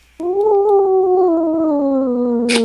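A single long, drawn-out cat meow, loud, holding a steady tone that slowly sinks in pitch, ending with a brief rustling burst.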